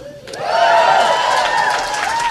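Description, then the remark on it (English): An audience breaks into applause after a brief pause, dense clapping mixed with some cheering voices, holding steady and fairly loud for a couple of seconds. The audience is at a stand-up comedy show at Cobb's Comedy Club. “Oh, it's first people to applaud.”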